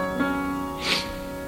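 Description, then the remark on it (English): A short, airy sniffle cuts in at the start of a song recorded in a basement studio in Minnesota, over softly sustained musical tones, a quick breathy intake standing out briefly against the steady held notes. “but we do get these cute little sniffles at the start of the song.”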